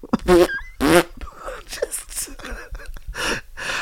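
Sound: voice imitating a fart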